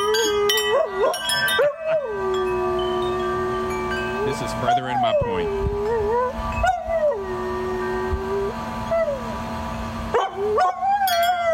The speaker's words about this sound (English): So I found a dog who loves wind chimes. Well, the dog is dumb, too. Well, this dog loves wind chimes so much because the dog likes to play the wind chimes and then sing along to the wind chimes.